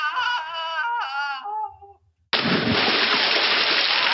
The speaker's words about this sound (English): Suddenly, there's a splash.